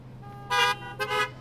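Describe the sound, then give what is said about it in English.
Two short, bright car horn honks in quick succession, blown in answer to a preacher's call to blow your horn and say amen, each a brassy harmonic blast, the second slightly longer and softer, over a low steady hum. “If this week was not a career week for you as a Christian, blow your horn, say amen.”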